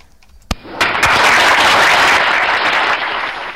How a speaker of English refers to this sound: I don't think I've got my magic button that does claps and claps and claps all round, do I? Hang on. I might. I do.